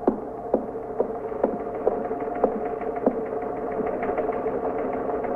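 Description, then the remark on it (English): A teletype machine chatters steadily, printing an alarm about a stolen car up in the 52nd, its mechanical hum punctuated by sharp, regular clacks about twice a second, with no voices present. “You want to see what that is on the teletype?”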